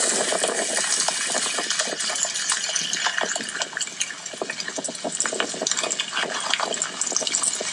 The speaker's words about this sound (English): So it is actually lava. Lava? Yes, so it is lava. Oh, it's bubbling lava.